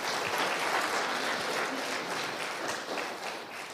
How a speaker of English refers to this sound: Let's just give them a hand there.